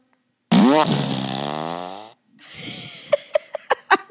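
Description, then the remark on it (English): A long, loud, buzzy fart sound effect from a fart machine, with a rising then sagging pitch, followed by a wet, sputtering tail that ends in a quick run of sharp pops. “I have a fart machine.”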